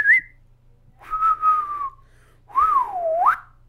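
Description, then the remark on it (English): A person whistles an excited little tune: a quick chirp, then a held steady note, then a swooping note that dips and rises sharply at the end. No one speaks. “what's that little excited whistle noise you make?”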